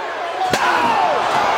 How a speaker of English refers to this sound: Ow! Kurt Angle just crushed Taz's skull with a chair! My God!